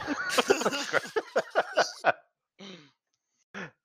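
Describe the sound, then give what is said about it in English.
A rapid string of about ten buzzy, sputtering mouth-made fart noises blown into a microphone, loud and rhythmic, followed after a pause by two shorter, softer raspberry blurts. “making fart noises into the mic.”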